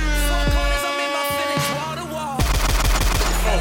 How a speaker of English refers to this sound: Can't use gunshots